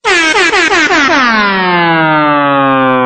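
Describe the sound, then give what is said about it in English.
A rap-style air horn sound effect blasts loudly, stuttering in several quick bursts before sliding down into one long, drawn-out blare that fades slightly at the end. “Put the rap air horns in, man.”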